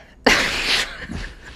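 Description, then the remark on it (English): A single sudden, loud sneeze bursts out with a sharp onset and a breathy, hissing burst that fades within about half a second, followed by faint room noise. “Bless you.”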